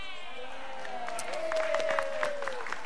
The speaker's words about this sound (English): He's clapping. For those of you, he's clapping his hands.